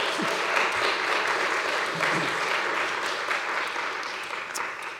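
An audience claps for the mothers in the room, steadily for several seconds, a dense, even wash of many hands with no clear individual beats, staying loud throughout before easing slightly at the end.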